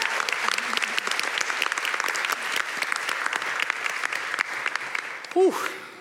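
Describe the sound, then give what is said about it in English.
A crowd applauds both teams at the end of a debate, a steady, dense wash of clapping that holds its level for several seconds, broken near the end by a brief rising whistle-like tone. “Could we give them one last round of applause for a job very well done?”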